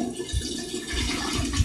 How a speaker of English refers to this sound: I think that's it, right? Just a nice flush, you little bitch.